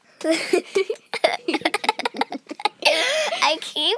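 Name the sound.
coughing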